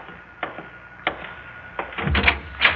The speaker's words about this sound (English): Oh, I'll get the door. No, let me.